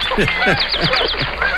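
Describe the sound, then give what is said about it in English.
A horned grebe gives a rapid run of shrill, squealing calls, five or six quick rising-and-falling notes in a row, loud with no other sounds around them. “The horned grebe is exactly right.”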